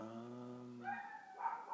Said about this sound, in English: Yeah, I feel like there's like 7 different little dogs out there right now. And they're all just interrupting me, you know? I'm trying to speak.